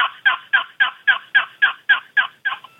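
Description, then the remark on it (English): A steady series of about ten turkey yelps played on a two-sided turkey call, evenly spaced and fairly loud, each note sharp and raspy, with no talking. “this is a two-sided call, and if you have trouble finding out and keeping your yelps, you know, consistent”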